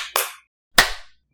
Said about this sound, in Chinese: 3, 2, 1, 拍手。